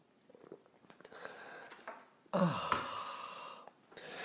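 After a few soft rustles, a loud airy slurp of someone sipping coffee, called the simultaneous sip, bursts out, trailing into a breathy, sigh-like exhale before a brief pause and more faint noise.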